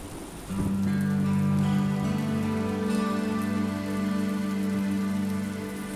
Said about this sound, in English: Well, the wind and the rain are beating against the window of my personal space here at Parsons Prairie Parsonage.